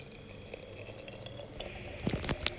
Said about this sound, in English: So I still haven't got my new tea kettle yet. So I'm having to boil the water in a little aluminum pitcher. It definitely does not give you that lovely whistling sound, which I really would have loved to include here.